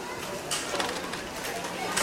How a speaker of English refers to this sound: It's the house sparrow, a highly adaptable bird that's made a living around humans for thousands of years.